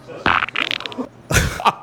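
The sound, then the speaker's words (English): A wet, sputtering fart in two bursts: a longer crackling stretch, a short pause, then a loud, splattery second blast. “There's some wet farts in the bin this evening.”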